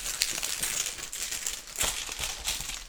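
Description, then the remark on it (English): Game tokens are shuffled around in a bag during a card game, making a continuous rustling and soft clicking clatter with small sharp bumps throughout, no voices present. “Nice and shuffled up.”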